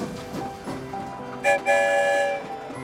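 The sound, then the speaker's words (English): A train rumbles steadily along with rhythmic clatter, then a short whistle toot is followed by a longer, brighter whistle blast over the rolling noise. “I wonder where the story train will lead us this time.”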